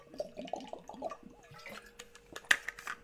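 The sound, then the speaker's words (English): Liquid sounds of someone taking a quick swig of water: a quick run of wet gulps and sloshes, then a sharper splash or clink near the end, with no talking. “Quick swig of water.”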